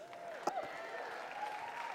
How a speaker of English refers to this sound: I mean, they preached better than you're clapping